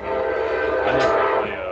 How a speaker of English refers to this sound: Sorry, there's a train. Let me go back inside.